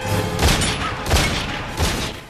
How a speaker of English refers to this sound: You would have thought those kids would have been a bit more surprised by the gunfire.